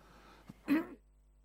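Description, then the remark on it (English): A single short, throaty cough from a person reading aloud from the Bible, slightly muffled, comes just after a faint breath or click, then quiet follows. No one speaks. “I'm about to cough, guys. You might want to turn me down so I can cough.”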